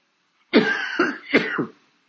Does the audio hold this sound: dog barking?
no